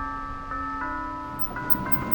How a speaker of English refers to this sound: Okay, well, thankfully, the coordinates spit us out kind of right here at the front door, so let's ring the bell.